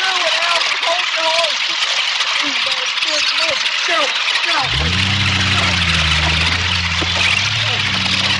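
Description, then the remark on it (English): Voices talk over a busy background, then a truck engine roars to life, climbing briefly in pitch before settling into a loud, steady revving drone that runs to the end, as the truck is used to pull a stuck man out. “Get the truck. Hurry.”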